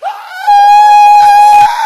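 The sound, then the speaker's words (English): A voice imitates the scream of a woman who was healed of deafness: one loud, sustained, high-pitched shriek lasting nearly two seconds, steady and piercing, with no other talking around it. “She starts screaming.”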